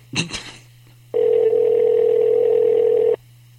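A brief rustle and click, then the single steady electronic ringing tone of an outgoing phone call placed live on air sounds for about two seconds and stops, with a faint low hum underneath throughout.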